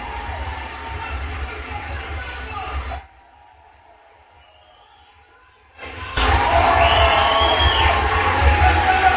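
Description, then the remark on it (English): A large audience at the end of a live show cheers and roars loudly, breaks off into near silence for a few seconds, then erupts again into even louder, sustained cheering and whooping. “So we'll just play the cheers at the end.”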